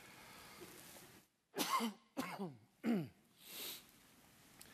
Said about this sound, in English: Excuse my cough. We got a little bit run down on our trip.